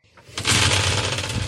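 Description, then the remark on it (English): Dice clatter and tumble across a hard tabletop in a quick burst of rattling clicks, loud, continuing for about a second before settling. “What the fuck has happened to my dice?”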